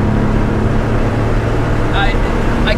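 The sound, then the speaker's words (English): A car engine roars loudly and continuously as the car peels out without being floored, with a couple of brief, high tire squeals breaking through near the end. “Peeled out of there. You'd be proud. That's how you do it. But that's the torque, by the way, on this engine.”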